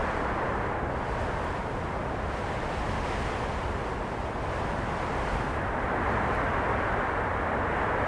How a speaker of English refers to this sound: From the outset, we get a link between the birds and unusual weather events, in particular, a bitterly cold east wind. We're listening to a field recording of wind made by the sound artist Francisco Lopez.